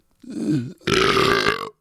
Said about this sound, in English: It was like subtle. It was an average burp. Whatever the other person says. 5, yeah. It was your average burp, man. There was nothing special about it. It was guttural. It was primal.